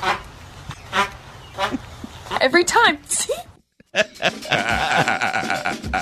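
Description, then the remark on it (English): A few short, squeaky, fart-like rasps of jumpsuit fabric rubbing as someone bends down come in a quick cluster in the middle, with people talking before and after. “Every time I bend down, it sounds like I'm farting.”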